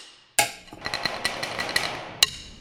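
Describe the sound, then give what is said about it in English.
A drumstick bangs on household objects around an apartment, captured with a field recorder: one loud crack, then a quick, uneven run of lighter taps with a bright, ringing metallic tone, and a final sharp hit. No voices. “Well, a lot of times I start with a field recorder and I'll use like a drumstick and I'll bang on different stuff around my apartment.”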